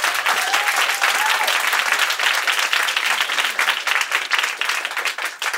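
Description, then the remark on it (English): Loud, sustained applause from an audience, a dense wash of many hands clapping at once that holds steady for several seconds, with faint voices briefly audible underneath; the audience is clapping to vote yes on whether America is too obsessed with race. “So please clap loudly if you think, yes, America is too obsessed with race.”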